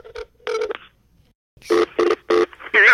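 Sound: telephone dialing tones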